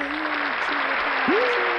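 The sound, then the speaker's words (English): A burst of fake crowd applause and cheering, played as a sound bite: dense and steady throughout, with a few whistle-like tones rising above the clapping noise. “That's when you put a little sound bite in right there. It's a fake crowd.”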